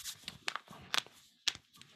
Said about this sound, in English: Computer clicking its fingers.